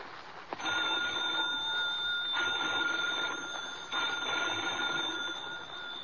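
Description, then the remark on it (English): A telephone bell rings urgently and continuously in the dimness of an old lighthouse, loud, starting after a brief click and clattering on for about five seconds with no voices. “Phone bells ringing urgently in the dimness of the old lighthouse.”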